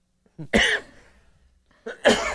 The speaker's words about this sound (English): It's the ice. It makes him cough.